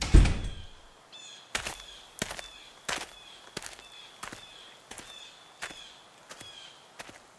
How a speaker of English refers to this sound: Well, I mean, just in a way that it just ends that with you can hear the people leaving and closing the doors and kind of walking off.